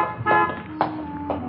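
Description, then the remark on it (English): A car pulls away from a garage as a young blonde woman drives off in the holdup car, a steady engine hum punctuated by three short, evenly spaced horn-like toots, with no one speaking. “The young blonde entered the garage office, paid the repair bill, and drove off in the holdup car.”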